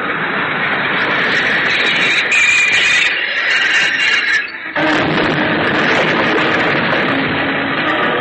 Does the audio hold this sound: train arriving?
yes